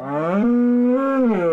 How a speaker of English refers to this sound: What is that? Yeah. Where'd that cow come from?